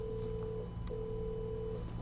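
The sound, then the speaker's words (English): A steady telephone tone sounds in two long beeps separated by a brief pause, clear over a low constant hum, with no one speaking. “don't imagine somebody sitting on the other end just waiting for your piece of music, and my gosh, that's the best piece of music I've ever heard, and they're going to pick the phone up and call you right then and there.”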